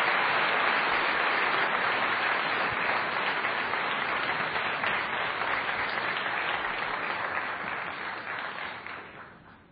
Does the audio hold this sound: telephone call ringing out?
no